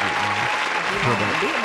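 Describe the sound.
Steady, dense applause fills the moment, a continuous crackle of many hands clapping, with voices calling out and talking over it.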